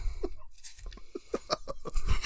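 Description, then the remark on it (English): Notebook pages flipped to find a quote: a quick run of soft, crisp paper rustles and flicks in an irregular rhythm, fairly quiet, with no one speaking. “We get to hear some notebook pages turning.”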